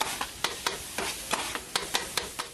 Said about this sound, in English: So we hear some of the sounds around his neighborhood as there's a street vendor grilling chicken.